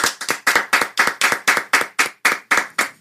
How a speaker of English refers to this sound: Can we get a round of applause for Brock?